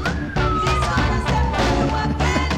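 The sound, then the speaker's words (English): A whistled melody with clear, sliding high notes rides over a steady backing of bass and percussive beats in a recorded music track, loud and continuous throughout. “Ordinarily, I hate whistling records, but this... This is the best.”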